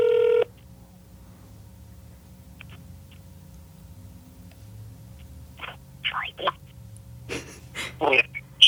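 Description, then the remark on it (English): A short electronic ringing tone sounds through a phone on speakerphone during a call to the caller's child, then a long stretch of quiet line hum with a few soft breaths and clicks. “It's ringing.”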